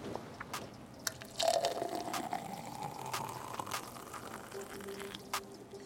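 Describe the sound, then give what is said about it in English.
A sea moss drink pours steadily into a cup, its gurgling pitch rising as the cup fills over several seconds, with a few sharp clicks and taps scattered throughout. “Pour up.”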